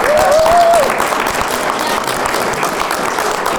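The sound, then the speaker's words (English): An audience at an event bursts into a full round of applause for a man, dense overlapping clapping that stays loud and steady throughout, with a brief high whoop rising above it near the start. “So give this man a big round of applause.”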